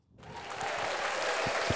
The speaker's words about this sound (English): More applause.